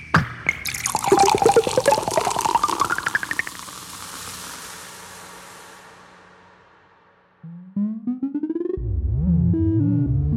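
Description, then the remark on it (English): A synthesized Coca-Cola bottle pop and pour for a commercial, made from a filtered sub-audio waveform's harmonics with white-noise fizz: the bottle pops open, then a bubbly pour rises in pitch while bright hissing fizz slowly fades over several seconds, followed by a few electronic synth tones. “And then the fizz with the white noise. And that gives you Coca-Cola Pop and Pour.”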